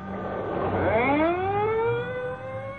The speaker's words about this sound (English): The ambulance is pulling away. And there go the police cars.